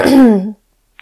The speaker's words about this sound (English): Can barely hear myself say it. I clear my throat.